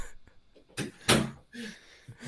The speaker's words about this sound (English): Sorry, it's my wife. She's got the dog up here. Let me close the door.